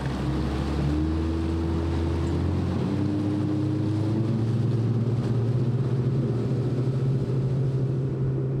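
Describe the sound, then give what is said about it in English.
A boat motor drones steadily, its low engine hum rising slightly in pitch as the boat pushes off into a channel in the Lower Mississippi River wetlands, with water churning beneath and no voices. “Paul unties our boat, and we push off into the channel.”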